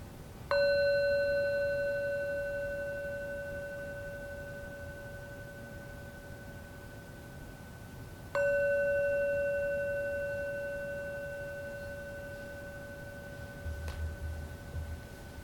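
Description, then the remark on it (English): A meditation bell is struck twice, about eight seconds apart. Each strike gives a clear, mid-pitched ringing tone with bright overtones that slowly fades into quiet. “Where does it go when the bell sounds?”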